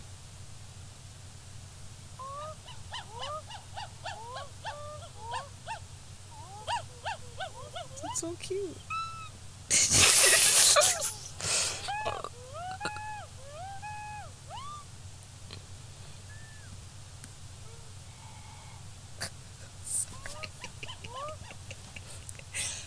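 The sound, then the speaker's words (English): A monkey squeaks and chirps in the audio of a video being played back: quick high-pitched calls bending up and down in bursts over a steady hum, broken by a sudden loud crackle, with a person briefly speaking. “Do you wanna see this video of this monkey?”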